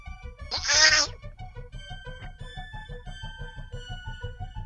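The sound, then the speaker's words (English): A cat gives one loud meow near the start, followed by a steady low, rhythmic purr-like rumble that continues to the end. “Animal noises. Cat sounds. Meow.”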